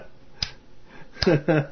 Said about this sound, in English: Wait, nobody else was with me? Oh. You started the slow clap. That's right. Nobody clapped in.